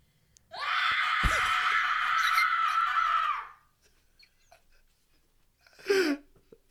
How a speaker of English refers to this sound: Wow. Okay, legitimately, though, that was like the voice acting sound of a woman who's terrified. That was actually terrifying. I practice it for when I get kidnapped. I hope the neighbors are like, what the hell is going on? That was so scary.